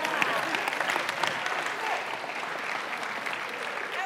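Steady applause from an audience, a dense crackle of many hands clapping at an even loudness for several seconds without a clear rhythm.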